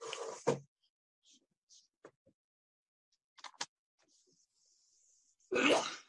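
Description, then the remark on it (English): A person sneezes twice, loud, once at the very start and again near the end, with near silence and a few faint clicks in between. No one speaks. “I'm sorry, I'm sneezing.”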